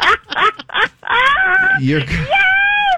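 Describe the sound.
A caller screams over a phone line in loud, high-pitched bursts: a few short yelps, then long sustained screams with sliding pitch, intense and excited, after winning a cash prize in a radio call-in.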